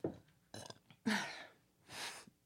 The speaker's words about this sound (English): So, first up, hold on, I have to burp.